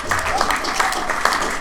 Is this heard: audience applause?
yes